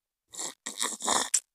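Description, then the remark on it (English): Wet mouth sounds of someone sipping and gulping water from a cup: three longer slurping pulls and a short final swallow, loud and intimate, with no talking. “Let me drink a sip of water from my lovely cup.”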